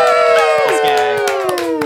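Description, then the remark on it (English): An audience cheers loudly for guest Will Wallace, one of the writers of Teen Wolf, with sustained whoops and shouts that slide gradually downward in pitch, while scattered claps pop through the steady, full roar. “Give it up for Will Wallace.”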